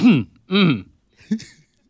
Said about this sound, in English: It wasn't a cough, Slippery Turtle. It was a throat clear.